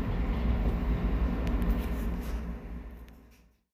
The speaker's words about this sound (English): This is Midway, as far as this train goes. All passengers must leave the train. Thank you for riding the CTA Orange Line.